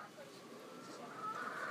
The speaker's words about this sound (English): That's Salt. There are four chickens. Ah, she's seen her mummy. She's going nuts.